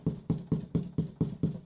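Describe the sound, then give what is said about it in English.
Seven quick, evenly spaced knocks on wood, each a dull, hollow thump in a steady rhythm with no voices. “He's knocking.”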